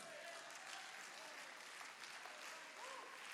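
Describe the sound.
A church audience claps steadily for the full few seconds in response to a sermon on Hebrews 12:6, a dense, continuous wash of applause with faint voices calling out underneath.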